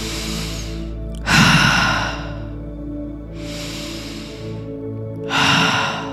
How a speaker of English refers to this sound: And again, and out. And just keep breathing at a nice, deep pace in through the nose, out through the mouth.